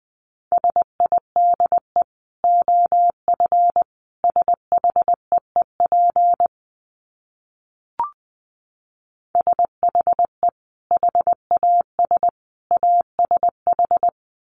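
Morse code sent at about 20 words per minute: a steady mid-pitched tone keyed into rapid dits and dahs, in two runs split by a pause with a single soft click.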